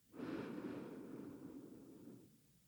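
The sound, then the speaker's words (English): A long, steady, deep inhalation through the nose, fairly loud, swelling quickly and then tapering off over a couple of seconds with no talking. “So breathing in.”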